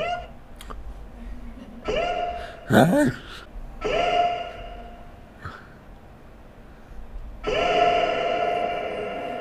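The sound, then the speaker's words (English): A sampler reverb effect: several short tonal bursts, one a warbling chirp, each ringing out into long, smeared echo tails that hang in the air. Moderately loud, with no talking. “This is called reverb. It sounds like you're in a big bathroom or maybe a stadium.”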